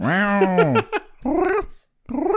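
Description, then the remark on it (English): A person imitates a cat, making three drawn-out, whiny meow sounds with sliding pitch. The first is the longest, and there are short pauses between them. “So I'm just going to make some cat noises.”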